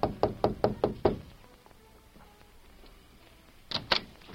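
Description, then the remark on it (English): Five quick, firm knocks on a wooden hotel room door in the town of Flat Rock, as the Lone Ranger and Tonto knock at Lolita's door, in a steady rhythm, then a pause of a few seconds before two more knocks follow. The knocking is clear, with no voices. “A few minutes later, they knocked at her door.”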